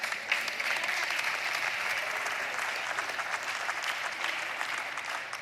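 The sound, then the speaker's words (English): A crowd claps steadily and densely for several seconds, a continuous wash of many hands with no voices standing out, holding at an even loudness before tapering slightly at the end. “You can clap that one too.”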